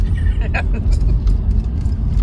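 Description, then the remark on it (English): A car engine works steadily as the vehicle climbs a very steep hill road in New England, covered in potholes and patches, with cars parked on either side and two cars in front; a loud, continuous low rumble of engine and tyre noise heard from inside the car. “And this is a good example, too, because there are two cars in front of us.”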